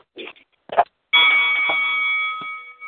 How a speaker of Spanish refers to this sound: Okay, ya tú sabes, el sonido de la campana